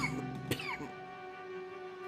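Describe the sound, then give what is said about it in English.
A man in a train car coughs: a single sharp cough bursts out near the start, followed by a wheezy, rasping throat sound that trails off, against a steady low hum. “The sound of pain quickly escalated to visual pain as the man started to hunch over as he coughed.”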